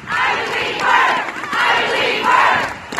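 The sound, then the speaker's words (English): A large crowd at a protest rally in Belfast chants the slogan "I believe her" in unison, the loud rhythmic shouts rising and falling in repeated waves, roughly three phrases over a few seconds. “Somebody shouted, "I believe her." Then loads of people started shouting it.”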